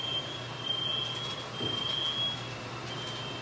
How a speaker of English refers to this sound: the pan that was hot, it's smoking. And I'm a little bit nervous, but I'm gonna try to put this over the hot flame. So here we go. So I'm not, so yeah, this possibly, I don't wanna start these on, all right, so you can hear the smoke alarms go off.